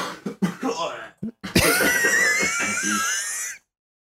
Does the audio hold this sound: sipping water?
no